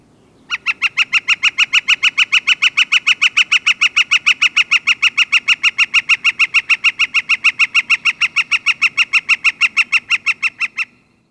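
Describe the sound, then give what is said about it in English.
A northern flicker's long call: a loud series of rapid, evenly spaced ringing notes, about five per second, running steadily for roughly ten seconds before stopping abruptly. “And here is the northern flicker calls.”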